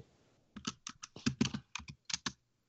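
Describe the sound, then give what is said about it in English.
Quick bursts of typing on a computer keyboard, a dozen or so sharp clacks in an uneven rhythm, fairly loud, with no one talking over them. “stop typing.”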